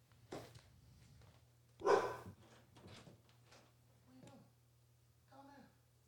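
A dog gives one loud bark amid shuffling, scuffling movement, followed by a couple of softer whining yelps, all over a steady low electrical hum.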